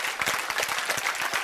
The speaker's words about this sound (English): I'm going to wait while you clap your hands at me.